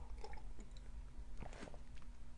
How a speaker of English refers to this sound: I need a sip of tea. Let's have a sip, huh? People with misophonia, you might want to go clean the house right now.